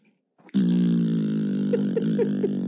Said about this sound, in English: Alexa, fart. That was a muffled one. Would you like to hear another fart? Yes.